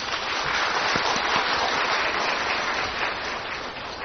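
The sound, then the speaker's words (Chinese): An audience claps steadily for about four seconds to welcome a speaker, a dense, even crackle of many hands at a constant level with no voices over it. “请我们鼓掌欢迎他。”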